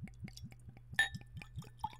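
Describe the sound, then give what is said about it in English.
A bottle of Ledaig whisky and a whisky glass are handled: one bright glass clink rings on briefly, among soft knocks and faint liquid sounds, over a steady low rhythmic thumping. No one speaks. “That's a nice bottle of Ledgig.”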